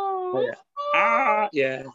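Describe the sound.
A person imitates a scream: three strained, high-pitched wailing bursts, the first held steady, then a short break before two louder, rising cries.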